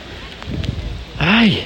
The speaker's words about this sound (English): But I don't think there's any danger of this rain stopping anytime soon. It's absolutely horrendous.